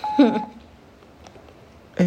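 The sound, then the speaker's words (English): A phone's ringing tone sounds once as a steady electronic beep, briefly overlapped by a voice, then a quiet pause before another short burst of sound near the end. “Like, why the fuck is she calling?”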